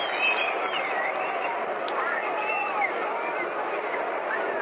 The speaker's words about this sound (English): Well, they've retrieved the last bit of it now, and there's a round of applause for them.